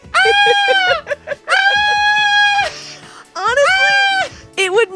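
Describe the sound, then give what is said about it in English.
A human voice imitates a frightened bird with loud, strained, wavering screeches in several bursts, some long and sustained, ending with shorter quivering cries. “What if birds aren't singing and they're screaming because they're scared of heights? They're just up in the trees like...”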